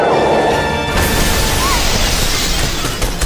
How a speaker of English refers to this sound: Batman grabbed a hold of Vicky and fired his grappling gun sideways. The grappling hook wrapped around one of the lower gargoyles. Batman and Vicky swung and crashed into one of the cathedral's windows.